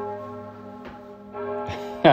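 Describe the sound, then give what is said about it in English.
A church bell rings at 7 a.m. with a sustained, humming resonance, struck again a few times; the last strike is the loudest. “Okay, the bell finally stopped ringing. So I've got my compression socks. Oh, it started again.”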